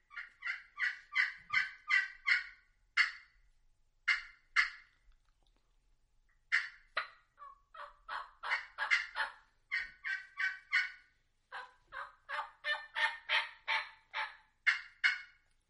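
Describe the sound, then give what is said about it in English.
Turkey hen yelps imitated with a mouth call, a mouth diaphragm call and a slate call mixed together to sound like multiple hens. They come in quick rhythmic runs that overlap like several hens. The calls are loud, with short pauses and no talking. “I was to say that's a mouth and a mouth diaphragm and a slate mixed together to sound like multiple turkeys.”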